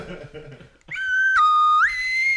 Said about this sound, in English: Good slide whistle to you.